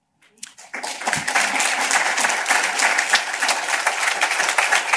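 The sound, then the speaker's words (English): An audience at a speech about Chicago housing investments breaks into applause after a brief pause, the clapping quickly swelling into a dense, steady roar of many hands that holds at a fairly loud level throughout. “Okay, I'll let you clap on this next one.”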